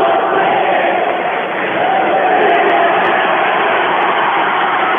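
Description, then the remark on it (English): A large basketball crowd at a Vikings versus Tigers game chants "We want Jack" and roars in a steady, dense wall of voices that stays loud for the whole stretch, with only a brief dip partway through. “The crowd is chanting, "We want Jack," as in Jack Hall, I think.”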